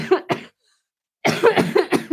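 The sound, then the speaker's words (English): A harsh coughing fit from bronchitis: two quick coughs, a brief silence, then a rapid string of four or five more hacking coughs, loud, with no talking. “Like a whole 2 seconds of coughing.”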